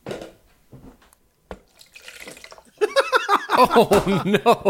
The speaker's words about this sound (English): Poured it out into a bucket.